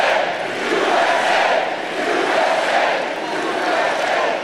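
A large rally crowd chants and cheers in a loud, continuous roar, the massed voices swelling and dipping in a loose rhythm for several seconds, with no single voice standing out.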